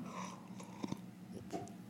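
Someone takes a quiet sip of a drink, with a couple of soft wet swallowing clicks and light breathing; no one speaks.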